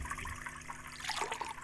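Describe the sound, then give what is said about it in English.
Water pours and splashes in a steady rush for under two seconds, swelling briefly toward the end, as water rushes out of jars being tipped over onto an altar, the excess running off into a ditch. No voices are heard. “And the water rushed out of the jar as they tipped them over.”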